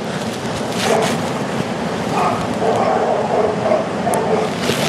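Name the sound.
dogs barking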